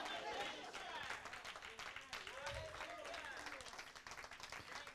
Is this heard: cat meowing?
no